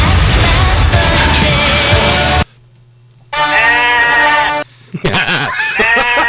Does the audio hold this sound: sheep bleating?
yes